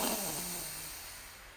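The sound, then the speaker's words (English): A long, deep breath drawn in through the nose during a breathing exercise, steady, with a slightly raspy, snore-like edge that gradually softens over about a second and a half, the belly extending out on the in-breath. “Breathing in, extending our belly out.”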